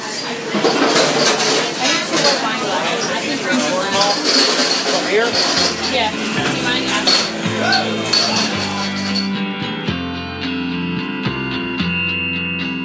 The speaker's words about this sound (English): If you've ever wondered what a busy restaurant kitchen sounds like, you're listening to it.